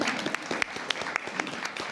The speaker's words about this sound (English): That was a clap for you, by the way.